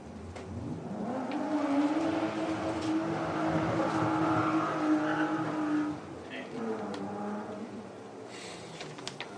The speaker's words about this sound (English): Somebody's building good motorbikes, huh?